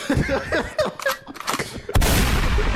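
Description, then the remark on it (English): A gunshot sound effect cracks out sharply near the end, loud and sudden, leaving a dense hissing roar that lingers. Busy, warbling background sounds come before it. “Can we get the gunshot?”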